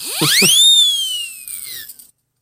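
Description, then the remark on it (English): A skeptic whistle is blown once, its shrill tone swooping sharply upward and then gliding slowly down for about two seconds before cutting off. It is loud, with no voices over it. “Gotta love the skeptic whistle.”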